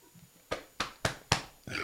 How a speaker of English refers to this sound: Oh, God. Hold on. I got a burp.